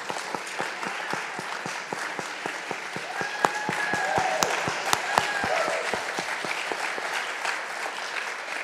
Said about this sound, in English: So let's, if we can just give a round of applause.